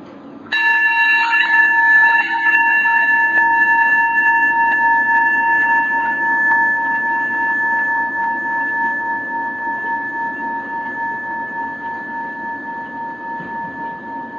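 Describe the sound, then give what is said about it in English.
A single meditation chime is struck once, sending out a bright, clear ring with several steady overtones that hang in the air and fade slowly over about fourteen seconds, with no talking. “So the chime that you'll hear is the invitation to move your gaze from the outer world to the inner world.”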